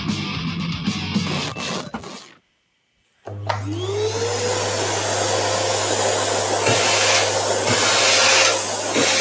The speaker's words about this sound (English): That's the Hoover. Yeah, you're running a vacuum. Vacuum cleaner, yes, you got it.